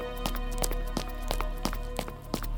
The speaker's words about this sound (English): Hurried footsteps on dirt. Clank of a handle of an iron door. The door opens. Footsteps resume on stone.